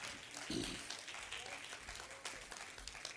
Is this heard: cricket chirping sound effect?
no